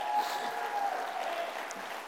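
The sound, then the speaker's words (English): An audience gives Jesus a round of applause, clapping together in steady, dense applause, a sustained wash of many hands that stays fairly even for the whole couple of seconds, with a faint tonal hum running underneath. “Come on, let's give Jesus a round of applause in here.”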